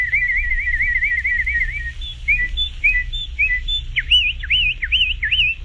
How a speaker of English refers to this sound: What's a southern bird doing with a northern name? Referring here to the northern mockingbird. A medium-sized, slender songbird that's gray above and whitish below with two white wing bars, and famous for its wing flash display